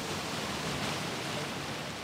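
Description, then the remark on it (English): The Vaal River in South Africa rushes past a riverbank bordered by tall willow trees, in a steady, unbroken hiss, an even wash of sound with no distinct splashes, heard alone without any voices. “But as I walk along the riverbank with”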